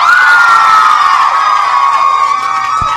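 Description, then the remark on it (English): A live audience screams and cheers loudly to show agreement with one side of a debate, a sustained high-pitched roar of many voices that holds steady for a few seconds before easing slightly. “If you agree with me and Andrew, just scream really loud.”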